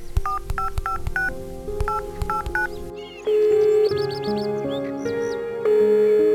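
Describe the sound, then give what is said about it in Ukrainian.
A mobile phone is switched on and the first contact name in its list is pressed to place a call: a rapid run of clear keypad beeps in short bursts, then a steady, loud electronic line tone holds, with a few chirpy blips over it. “Я вмикаю мобільний і натискаю перше ім'я у моєму списку.”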